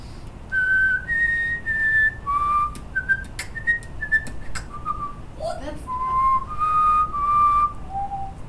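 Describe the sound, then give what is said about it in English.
A clear whistled melody of sustained, pitch-shifting notes, punctuated by sharp mouth-made percussive clicks and pops in a beatbox rhythm, a fairly loud whistle box remix on Hunger Games, with no talking. “And even today, I actually think about developing my own style, which I like to call the whistle box.”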